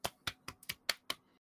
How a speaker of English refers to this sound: Clapping sounds, everybody. Quality product.